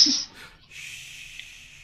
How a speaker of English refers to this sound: Don't bring attention to it. It'll make it happen more. I already yawned, so it's okay.